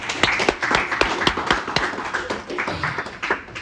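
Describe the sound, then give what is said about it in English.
One person claps their hands for themselves about a dozen times in a quick, slightly uneven rhythm. Each clap is a sharp, bright smack over a steady low background hum. “I'm going to give myself a clap.”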